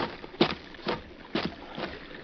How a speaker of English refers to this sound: I hear water. The cellar must come out on the shore near here.